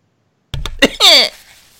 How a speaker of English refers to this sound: I'm going to blow my nose. I'm gonna mute my mic.